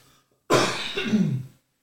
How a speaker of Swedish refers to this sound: Ursäkta mig. Jag hostar han tillbaka. Nu börjar han igen. Smitta alla i sin närhet.